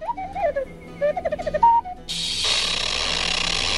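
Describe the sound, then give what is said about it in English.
A robot named Booba makes a string of warbling electronic chirps and beeps, rising and falling in pitch with a short steady tone, giving way to a loud, sustained hissing wheeze like escaping steam that runs to the end. “Do you understand all those clicks and wheezes?”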